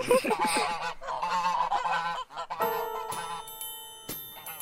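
geese honking

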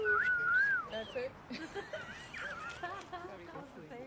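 people whistling

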